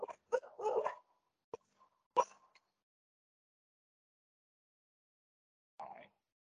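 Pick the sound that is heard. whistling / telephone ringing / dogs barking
dogs barking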